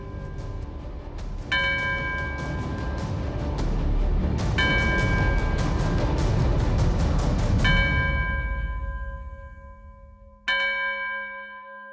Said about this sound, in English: The bell towers on the church begin to chime. Boom, boom. They ring out over and over. The fire licks around you. The chimes fill your ears. And the flare dances across the sky. The clock strikes 10.